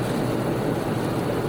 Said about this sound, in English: Oh, we got a little bit of traffic up here on the road for the car cast, but whatever.